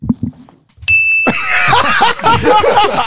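A single bright bell ding rings out briefly after a few soft sounds, then is quickly swamped by a loud, sustained burst of noisy commotion.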